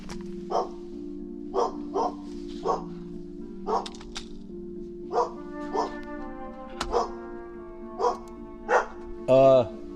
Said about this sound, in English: oops, there's my dog.